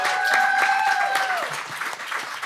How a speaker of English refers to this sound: I would love to just say thank you to everybody on this panel, real fast. If thank y'all you. Just give a round of applause.